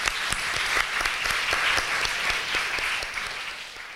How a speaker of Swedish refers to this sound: Jag tycker nästan att du kan få en applåd till med dig på grunden här faktiskt.